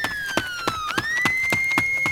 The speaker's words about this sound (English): you hear the alarm, obviously, but you also start to hear running coming from each direction from the north towards your corners.